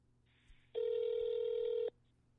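An outgoing phone call rings: a single loud, steady electronic ringback tone lasting about a second, preceded by a faint hiss on the line, with no talking.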